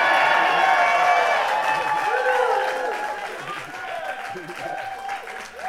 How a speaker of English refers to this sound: They like that one. It says here, extra pause for applause.